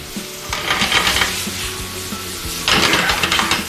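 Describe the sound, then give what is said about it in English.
Vegetables stir-frying in an oiled pan, a steady sizzle with scraping stirs, swelling louder in bursts as the food is tossed; no one speaks. “We just stir frying, sauteing.”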